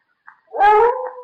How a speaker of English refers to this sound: It's Monsieur Lamartine's dog upstairs. I've never heard him howl like that before.